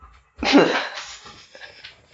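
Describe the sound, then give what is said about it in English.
A dog, a German shepherd named Mia, pants and slobbers: one loud, breathy, wet huff followed by softer, uneven snuffling breaths and moist mouth sounds, with no talking. “She's just going to have, like, a podcast really... of slobber and panting.”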